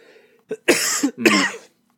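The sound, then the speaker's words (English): A short throat catch followed by two harsh, forceful coughs in quick succession, fairly loud, with no talking around them. “Which, excuse all the coughing people if any of this comes through.”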